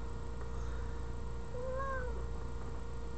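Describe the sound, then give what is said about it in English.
A female cat, trying to figure out where to jump, lets out a single drawn-out meow partway through, rising and then falling in pitch, over a steady low background hum. No one speaks. “Here comes the cat, so hang on. She's trying to figure out where she wants to jump.”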